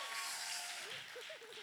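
An audience applauds in a steady, dense wash of clapping that lasts throughout, fairly soft overall, with a few short voiced calls or cheers rising over it toward the end.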